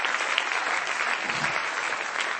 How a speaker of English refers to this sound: Come on, clap your hands to the Lord and give Him praise and give Him praise.